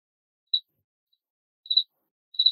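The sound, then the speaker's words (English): A cricket chirps in three short, high-pitched bursts spaced over a couple of seconds, close by and clear against an otherwise silent background. “If over this podcast, you can hear the cricket that was going on right next to me.”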